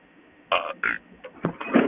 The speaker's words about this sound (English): I burped a little. Sorry about that.